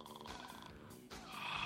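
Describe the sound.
A voice imitates snoring with a throaty, nasal rattle, drawn out in two fairly loud breaths lasting under two seconds.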